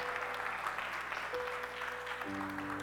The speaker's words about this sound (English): Come on, let's give God a hand clap of praise for that. Oh, you can do better than that. Go ahead and give God praise for that.